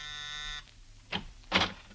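doorbell ringing

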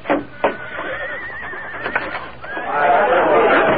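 horse whinnying

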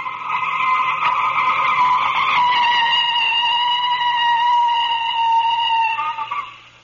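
car tires skidding

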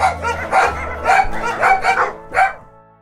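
dogs barking

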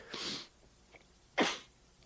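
throat clearing

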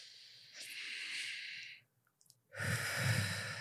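box breathing

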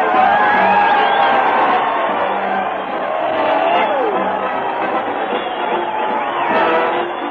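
crowd cheering

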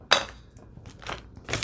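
paper being crumpled

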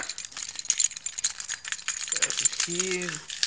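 keys rattling

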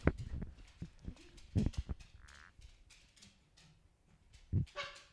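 dog barking

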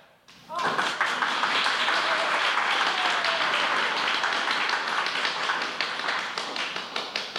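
studio audience applause

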